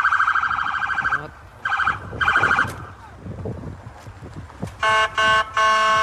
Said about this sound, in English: And that, I mean, I'm surprised Nunu didn't buck you when all the sirens were going off and that they hit your horse with their vehicle?